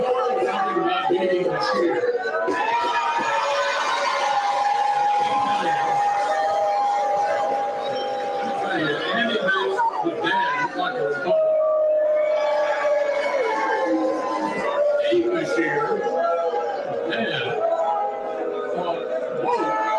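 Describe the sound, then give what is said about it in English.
A large, hostile hometown crowd yells and shouts "retire" continuously, loud and dense, drowning out a man's amplified voice trying to speak over the noise for the whole stretch. “many of you probably can't hear what he's saying, and no one else can either, because all they're yelling is retire.”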